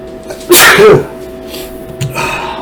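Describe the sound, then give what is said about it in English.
A single loud sneeze bursts out, sharp and bright, turned away from the microphone, followed by a short breathy exhale and a quiet background. “I sneezed away from the mic.”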